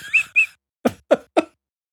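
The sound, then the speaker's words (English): A caller phoning in imitates the 2B werewolf howl: two short, high whistled notes, then three quick, strained vocal yelps in a steady rhythm, fairly loud, with no other talking. “Is that the 2B, the patented 2B howl that I forgot?”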